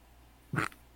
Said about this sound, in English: My cat is freaking out.